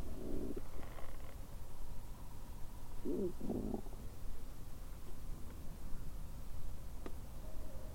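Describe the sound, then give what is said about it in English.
An owl hoots from far off in woods surrounding a cemetery: a soft low hoot early on, then two quick low hoots a few seconds later, faint beneath a steady wash of background noise with no talking. “Thought I heard an owl from way out.”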